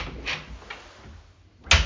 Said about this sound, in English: There, you can hear as it closes and creates that firm connection and creates a firm fire door seal.